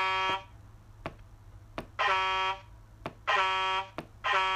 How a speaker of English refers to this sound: Yeah, I got to put the air horns on real quick. I got to wake myself up.